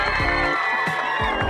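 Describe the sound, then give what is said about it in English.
A loud, steady wash of crowd cheering and applause played as a sound effect to celebrate a birthday, with whoops and raised voices layered over dense clapping throughout. “And I had to do, let me do a little bit more applause because, you know, I only get to do it once a year, y'all.”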